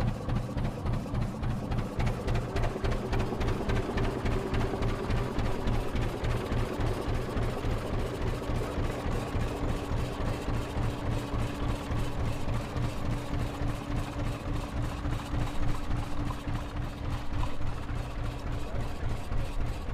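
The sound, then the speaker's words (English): A Massey Ferguson tractor engine idles, a steady, loud diesel chug with an even rapid pulse that holds unchanged for the whole stretch, with no talking over it. “This Massey Ferguson tractor behind us.”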